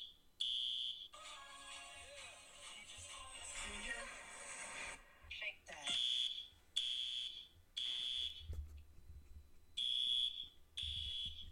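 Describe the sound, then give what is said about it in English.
A voice imitates a smoke alarm with a run of shrill, high-pitched beeps, loud, repeated in short evenly spaced bursts after a longer, noisier stretch. “Show the face of when she's just doing the alarm, how she is.”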